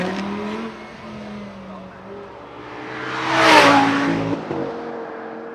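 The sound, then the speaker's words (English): An Audi R8 sports car engine hums steadily, then swells into a loud roaring rev that peaks midway and eases back down, prominent with a faint background hiss. “you're having a go in one of these Audi R8s.”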